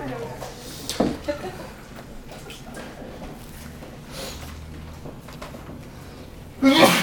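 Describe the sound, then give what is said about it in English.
A single sharp, short sneeze bursts out about a second in, over a low hum, during a teaching session on 1 Peter chapter 1; a voice starts speaking right at the end. “Bless you.”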